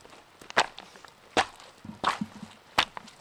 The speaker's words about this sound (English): Once the rocks are collected, other students dump them on the path, stomping on them to squish them in.